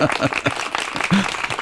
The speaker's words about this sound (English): do we have some kind of applause or something or whatever else?